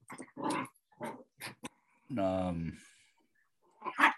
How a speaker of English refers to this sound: Oh, my dog is just like running around. No, I can hear her. She's just going all the way around.